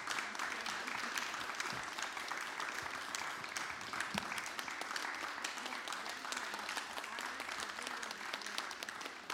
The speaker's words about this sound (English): So I'd like to ask everyone to give a round of applause to Ifeoma and to Richard and to Yongin and to Alice for today